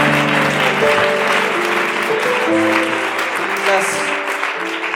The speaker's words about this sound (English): Why don't you clap your hands to him?